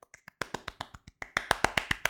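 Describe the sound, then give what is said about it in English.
A single person claps to imitate the applause break a TV joke about the Toronto Maple Leafs received: a few light, scattered claps, then a steady run of sharp claps that grows louder and a bit quicker. No one speaks. “it's the one that I wrote that got a fucking applause break.”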